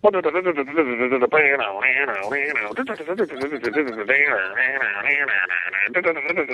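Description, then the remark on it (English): A person hums a fast, punchy punk guitar riff, voicing the melody in steady rhythmic bursts for several seconds, imitating an electric guitar with no instruments. “I think you should forget about all the equipment and just hum all the riffs for this album.”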